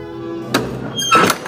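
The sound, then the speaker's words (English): A door unlocks with a solid thunk, followed a moment later by a second clattering knock as the latch gives way, both fairly loud over a steady low background hum. “She unlocked the door!”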